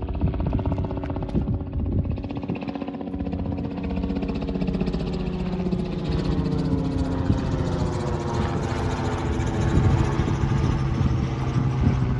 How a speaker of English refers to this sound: What is it that knows the helicopter that just passed overhead?